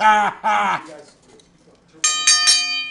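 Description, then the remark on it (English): A voice calls out briefly, then after a pause a metal bell is struck three times in quick succession, loud, its bright tone ringing on between strikes. “Oh, hey, stop that damn bell.”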